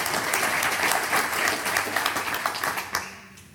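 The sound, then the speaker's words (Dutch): An audience applauds the speakers of a GDPR discussion with dense, sustained clapping that holds steady for about three seconds, then thins out and fades as a few final claps trail off. “Dus jullie ze een applaus willen geven, heel graag.”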